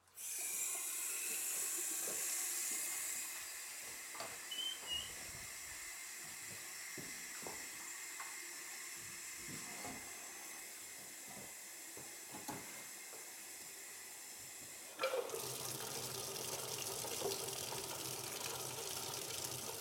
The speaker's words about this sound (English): So what we'll do is we'll operate all the fixtures, both sinks, clawfoot beautiful tub here, shower all at the same time, and then also test the toilet so we can see what the water pressure really is.